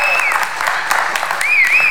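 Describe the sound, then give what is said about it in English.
An audience applauds two musicians who have just played, a dense, steady wash of hand claps with a few whistles rising above the clapping. “Give them both a good hand clap.”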